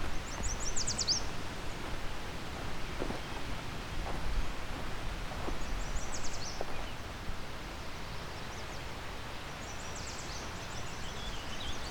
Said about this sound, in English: Quite a lot of yellow warblers here, everywhere I look.